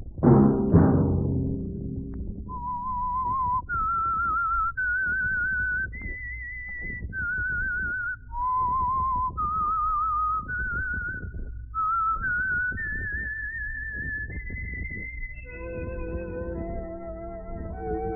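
A solo whistled melody, the theme of the Signal Oil program The Whistler, rises and falls in a slow series of sustained notes, clear, over a soft orchestral backing, with a brief low chord at the start.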